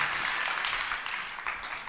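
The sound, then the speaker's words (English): An audience claps for themselves steadily for a couple of seconds, a dense, even patter of many hands at moderate volume with no talking over it. “If you can do it, clap for yourself.”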